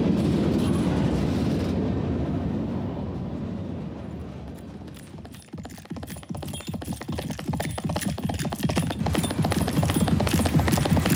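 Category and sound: vehicle, train rolling on rails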